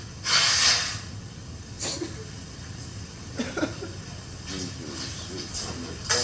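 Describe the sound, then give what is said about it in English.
A loud nose blow, a sharp hissing burst of air, followed by a few softer snorting and sniffing sounds over low background rumble. “Don't let me blow my nose and shit.”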